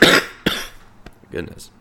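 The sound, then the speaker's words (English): A couple of sharp coughs in quick succession, followed by a softer throat-clearing rasp, with brief quiet gaps between the bursts. “Apparently my cough cared.”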